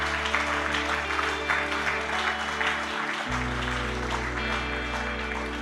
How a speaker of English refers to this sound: Oh, that's a full clap. That's the whole room clap. Everybody can clap for that.